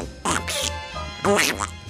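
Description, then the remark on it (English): A voice imitates the cartoon duck Donald Duck, producing two raspy, buzzy quacking bursts separated by a brief pause. “I could do Donald Duck.”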